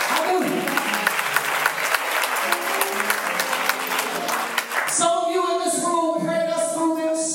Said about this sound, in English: I applaud the Hebrews 11. Give them a hand of praise.